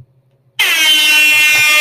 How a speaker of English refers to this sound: I got an air horn on my phone. You actually clicked on the air horn?